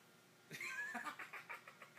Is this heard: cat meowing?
yes